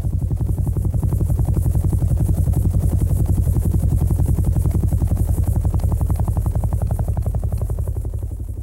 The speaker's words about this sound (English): As the boat made its way down the river, the passengers started hearing helicopters in the distance. The sounds got closer and closer.